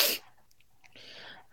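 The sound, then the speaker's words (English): A sharp, loud sneeze bursts out, followed by a brief quiet stretch with a soft breathy hiss, then the start of another loud burst at the end. “Well, oh, you sound like you're getting a cold.”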